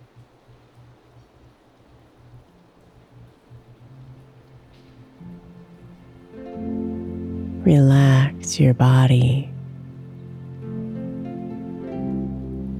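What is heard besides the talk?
raindrops falling outside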